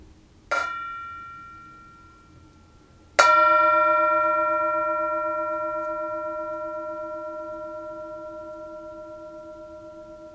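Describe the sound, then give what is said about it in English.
A singing bowl is struck twice, a softer tap followed by a firmer strike, each leaving a clear, sustained metallic ring that slowly fades over several seconds, with no voices. “And when you hear the sound of the singing bowl, that is an invitation to return to your breathing, return to this present moment, and enjoy the sound of the bell, the sound of the bowl.”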